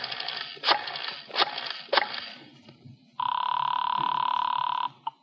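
A telephone line hisses with a few sharp clicks as a call is dialed seven times without looking at the phone, then a single long, steady ringing tone sounds clearly through the receiver before cutting off abruptly. No one speaks.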